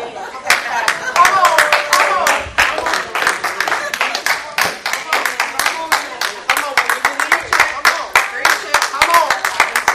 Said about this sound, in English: If you want the names of who was clapping, they're these fanatics.